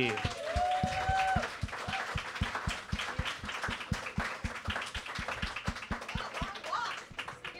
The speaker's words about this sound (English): To clap for longer, but yeah, that's all right. They can do that.